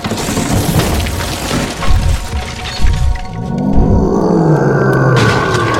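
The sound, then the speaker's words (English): A loud, crashing burst of splintering and breaking with several heavy thuds over about three seconds as a creature made of snow smashes apart a pub's wooden door, then a deep, sustained growling roar takes over. “The door to the pub was torn apart as a creature made of snow smashed its way inside.”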